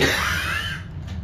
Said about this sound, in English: Oh, don't cough.